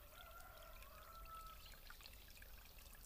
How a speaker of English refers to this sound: Presently she came to a spring, bubbling out from the hillside.